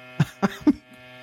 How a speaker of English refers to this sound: Okay, the loud humming I don't remember from the movie, but